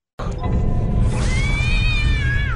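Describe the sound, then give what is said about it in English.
A boy in a horror film lets out one long, drawn-out imitation of a cat's meow, rising then slowly falling, loud over a steady low rumbling background noise. “And the cat boy. Yeah, I was going to say. Yes. The boy that meows.”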